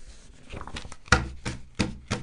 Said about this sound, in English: That's me shuffling my papers, buying a little time to figure out how I'm going to get out of this bit.